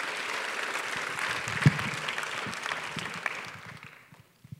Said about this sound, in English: Thank you, guys. Give them one big hand. Round of applause again.